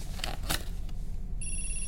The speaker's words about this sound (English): Ray, your phone. I hear it.